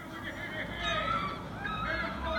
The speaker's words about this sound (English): Gulls are just chilling out, doing their thing, being like gulls. They usually wake me up in the morning, really irritating. Quack, quack, quack, quack, quack, quack. Seagulls, they really know how to sing, right? Really know how to sing.